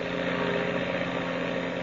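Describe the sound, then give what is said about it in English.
An airplane engine roars as Captain Midnight opens the throttle wide: a loud, steady, buzzing drone with a low harmonic hum that holds constant throughout, with no voices. “I'm opening this throttle wide, Steve.”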